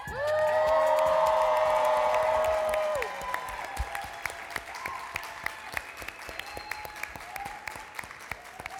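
An audience bursts into loud applause, dense clapping with high whistles and cheers for about three seconds, then settles into lighter, steady clapping that continues to the end.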